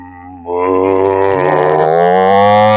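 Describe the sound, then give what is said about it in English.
A person imitates a cow with one long, loud, drawn-out vocal moo that starts softly, swells suddenly, then holds steady for over two seconds, with no other talking. “Right, let's do cow, yeah. Moo.”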